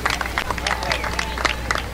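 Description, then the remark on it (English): A crowd applauds at a racetrack for a driver's third win of the year, a dense patter of claps rising and falling over a steady low rumble, with some indistinct chatter mixed in. “Round of applause for this guy.”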